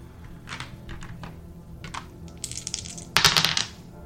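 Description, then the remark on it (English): Dice clatter across a hard tabletop: a run of light, sharp clicks and small taps, then a louder rattling burst near the end as they tumble and settle. No one speaks. “I'm gonna roll.”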